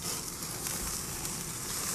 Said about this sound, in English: I think, can you hear that sizzle of me grilling up some chicken here? Let me lower the flame just a bit. I know you can hear that sizzle, right?